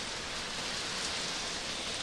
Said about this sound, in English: It's raining really hard. I hope you guys can hear me.